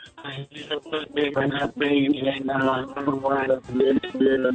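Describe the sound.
A caller from New Jersey talks over a poor phone line, the speech thin, band-limited and distorted, with choppy, garbled stretches that make the words hard to follow.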